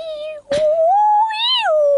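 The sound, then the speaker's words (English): A human voice imitates humpback whale song: a long, clear, wavering moan that swoops upward and slowly falls again, loud, broken once by a brief breathy burst early on. “does a good impression of a humpback whale.”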